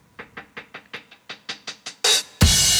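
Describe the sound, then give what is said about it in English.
A synthesizer filter sweeps upward across a steady run of about ten short pulsing notes, each brighter than the last, then gives way to two loud, hissy, wide-open bursts. “Filter sweeping up.”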